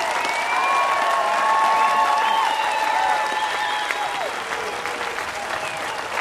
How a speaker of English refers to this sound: …, live at the Newport Folk Festival. The crowd definitely into it and calling for an encore.